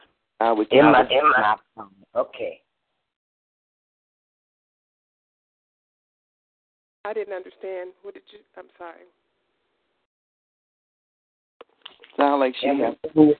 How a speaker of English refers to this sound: Everything you say is being repeated. Y'all don't hear that? I do. Yeah, well, I do. Bad echo in it.